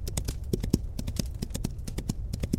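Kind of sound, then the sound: animal, horse hooves galloping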